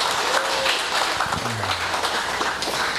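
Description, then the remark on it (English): A crowd applauds steadily for a man being thanked, a dense, even wash of many hands clapping at once, with a faint voice or whoop briefly rising through the noise. “If we can give him a round of applause, that'd be awesome.”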